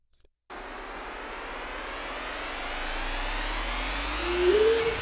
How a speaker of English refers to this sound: We also added this, like, cool riser.